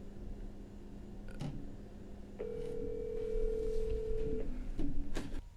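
A phone line hums, then a single steady electronic ring tone sounds for about two seconds, heard through the receiver, with a few soft clicks before and after and no talking.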